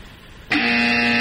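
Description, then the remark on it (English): A loud, harsh buzzer blares suddenly after a moment of quiet, holding a steady, grating tone with strong layered harmonics, the classic game-show wrong-answer strike sound, here marking a team's second strike. “That's 2 strikes, 2 answers on the board.”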